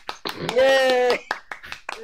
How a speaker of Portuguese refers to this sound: Uma salva de palmas para o Igor.